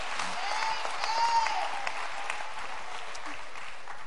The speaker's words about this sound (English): Clap your hands to the Lord and let's praise Him. Praise God.